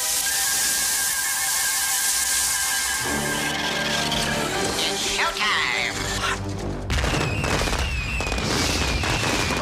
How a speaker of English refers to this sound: and that igloo explodes.